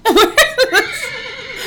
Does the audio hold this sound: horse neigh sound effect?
yes